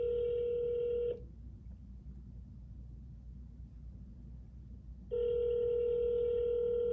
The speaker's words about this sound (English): All right, I'm trying to call